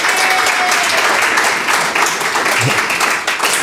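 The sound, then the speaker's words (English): An audience breaks into a steady round of applause for a guest who answered two Bible questions correctly. Dense overlapping claps are sustained loudly for the full few seconds with no speech over it. “Big round of applause.”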